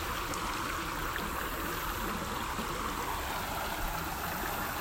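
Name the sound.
flowing stream water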